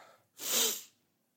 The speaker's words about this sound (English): Oh, I'm going to sneeze. Oh.